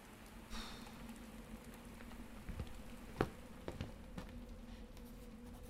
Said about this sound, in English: The sound of rain on the roof nearly put me to sleep. In fact, I think I even nodded off a few times.